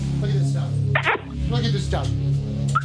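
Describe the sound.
A dog, Nilla, gives a couple of short, sharp barks, one near the middle and another at the very end, over a steady low background hum with some voices.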